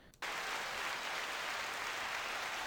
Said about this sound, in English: Let's do a little hand claps for her.